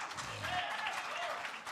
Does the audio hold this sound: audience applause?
yes